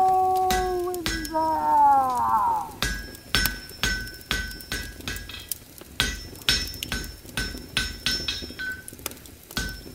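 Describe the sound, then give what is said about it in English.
A blacksmith's hammer strikes metal at a forge at dusk in a steady, loud rhythm of ringing blows, each clang leaving a bright metallic ring, after a brief opening of wavering, ringing tones. “As the sun sank into the west, the sound of the smith's hammering still echoed through the dusk.”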